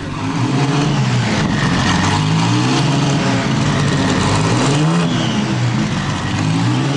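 A rare 1950 Ferrari racing car, once run in Formula 2, with a 2-litre 12-cylinder engine and 3 carburettors, revs loudly, its pitch climbing and dropping in repeated surges over a steady rumble, with no voices.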